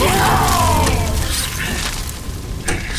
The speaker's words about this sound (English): A new Harrier intruder crashes through the ceiling,